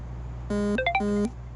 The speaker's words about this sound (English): Okay, well, my phone's still ringing, apparently, so we can only enjoy it so much.